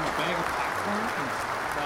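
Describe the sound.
A canned applause sound effect plays: a steady, dense wash of clapping at even loudness for about two seconds, with faint voices murmuring underneath.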